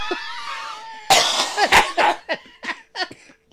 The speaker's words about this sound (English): Cough!